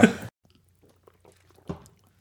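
Someone drinking: a loud wet slurp or gulp at the start, a pause with faint mouth noises, then a second, softer gulp. No one speaks.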